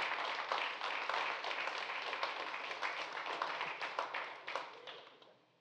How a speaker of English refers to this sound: Go ahead and give a hand clap.